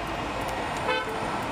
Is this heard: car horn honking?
yes